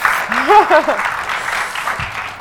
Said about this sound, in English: Should we do a round of applause or something? That would be good.